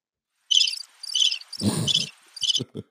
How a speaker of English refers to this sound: What you hit the crickets for